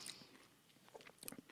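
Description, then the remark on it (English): Quiet, crunchy chewing of crunchy nougat during a blind taste test, with a few irregular crackling bites and soft mouth sounds, no voices. “The pretty crunchy nougat fell apart.”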